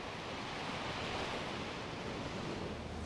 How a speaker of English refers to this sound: And in many ways, the stars, planets and galaxies are just surrounded by a sea of electromagnetic radiation, just as our two fishing boats are surrounded by a sea of water waves.